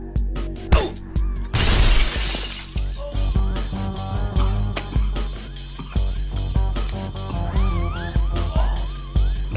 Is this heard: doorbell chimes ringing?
no